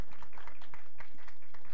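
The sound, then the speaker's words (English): A group of people clap their hands for Jesus in a steady, fairly quick rhythm, the claps blending into a moderately loud patter with no talking over it. “Y'all give Jesus a hand clap for that.”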